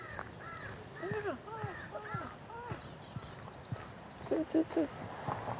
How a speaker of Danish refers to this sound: Det er en musvit, som er i gang med noget familiepleje der.